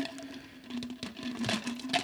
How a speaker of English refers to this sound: You just can't pour ice into something and not be loud.